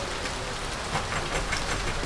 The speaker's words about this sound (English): Look at that rain come down!